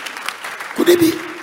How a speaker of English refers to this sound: Oh, give the Lord a clap of and preach.